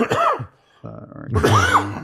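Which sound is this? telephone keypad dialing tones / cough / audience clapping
cough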